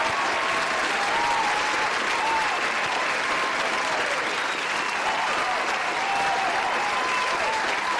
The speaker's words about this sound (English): We are here in Philly because of the Afros and Audios Podcast Festival, the fourth annual Afros and Audios Podcast Festival. And let me just say this off the bat. We just have to give the Afros and Audios Podcast Festival a round of applause.